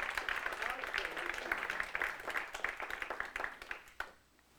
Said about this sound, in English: Would you clap for all these ladies again, please?